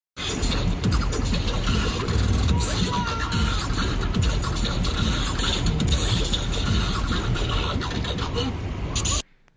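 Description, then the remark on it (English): Dense, rapid banging and thumping on a car's body by about seven people, nearly continuous for about nine seconds. Loud and chaotic, with scraping noise and indistinct voices mixed in before it cuts off abruptly. “First video, car banging. We're gonna play that clip right here.”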